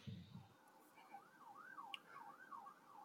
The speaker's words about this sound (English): As the sirens go in the background. Oh, my God, please tell me you got the sirens in there.